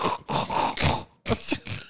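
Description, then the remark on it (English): A dog named Broly pants in quick, rhythmic, breathy huffs, about seven in a row with a short pause partway through. The panting is moderately loud, with no talking. “Yeah, when he starts panting, his mouth just goes from like ear to ear.”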